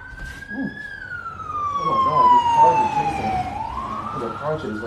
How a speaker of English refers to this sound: As you're talking about this car chase and they're like scooting the car. You heard all of it. All this craziness.